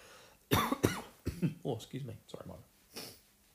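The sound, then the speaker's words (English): Two or three sharp coughs burst out in quick succession, followed by throaty voiced sounds and a final softer cough-like exhale. “excuse that cough.”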